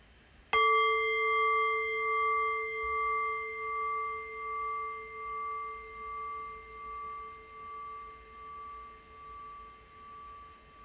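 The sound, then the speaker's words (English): A single meditation bell is struck once and rings out with clear, steady tones, slowly decaying over about ten seconds with a gentle pulsing shimmer as it fades. “And so in a few moments' time, I will ring the sound of the bell again.”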